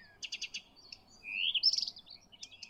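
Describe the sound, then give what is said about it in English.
Blyth's reed warbler singing in the middle of Finland: a quick series of bright repeated chirps, then a rising whistled phrase and a burst of rapid trills, varied and lively, with no voices present. “We found this other bird that I'd always heard was a great singer to sing along with, to play along with, these Blythe's reed warblers.”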